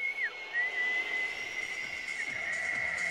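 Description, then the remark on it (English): A stadium crowd at a soccer match whistles loudly and continuously at the opposing team, a sustained shrill tone with brief pitch dips over a dense roar of crowd noise. “You could hear the crowd cheering up or disapproving while whistling the opposing team.”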